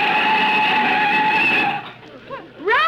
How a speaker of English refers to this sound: Mr. Benny stepped on the brakes.